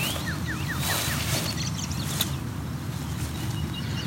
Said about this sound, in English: So while we are in an urban environment, still quite a lot of birds here. By urban, I mean within a certain range of urban areas.